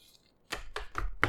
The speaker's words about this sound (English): That is paper. And that was pen.